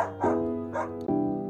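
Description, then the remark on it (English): A friendly old dog named Joy, adopted from an animal shelter, barks three times in close succession, loud, each bark drawn out with a tonal, slightly whining quality and no talking. “We adopt a friendly old dog from the animal shelter.”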